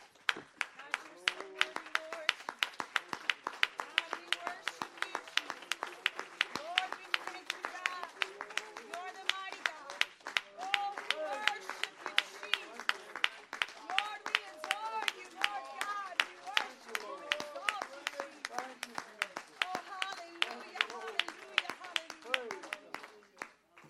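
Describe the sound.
A church audience, standing, claps steadily for about twenty seconds in a hand clap of praise to Jesus, many hands making a dense, sharp patter, while voices call out and cheer over the applause.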